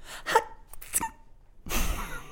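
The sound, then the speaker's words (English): A voice performs a dainty, cute sneeze for the character Jessica: a couple of quick, light breathy catches, then a soft, hissing 'choo' burst that trails off. No talking. “She releases a cute sneeze.”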